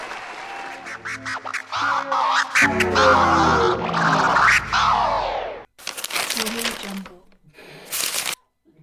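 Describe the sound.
A short burst of crackly, papery applause for several seconds with voices talking over it, a brief break, then a second rustling round of clapping that stops abruptly.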